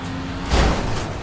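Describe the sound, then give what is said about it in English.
A single heavy bump as a teammate's car hits the player's car in a racing video game, a low thudding impact about halfway through, set against a steady, noisy engine drone with no voices. “Because of my teammate, he kept hitting my car.”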